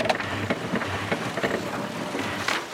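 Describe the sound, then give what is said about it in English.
A small printer named Bezor prints a list for guests: a steady mechanical whir fills the whole stretch, broken by soft rhythmic clicks roughly every half second, moderately loud, with no voices. “You can print the list now for our guests.”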